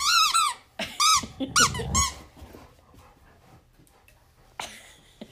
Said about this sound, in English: Oh, they've come to me. Now I have the squeaky toy.